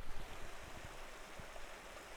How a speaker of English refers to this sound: So I decided I'm going to enjoy some nature. Like, if we're really quiet, we might actually hear the water.